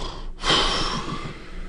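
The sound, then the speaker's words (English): A voice makes a single drawn-out, raspy imitation of snoring, loud, rumbling for about a second after a brief pause, with no other talking. “In the middle of September, yeah, I can snore about the baseball schedule announcement.”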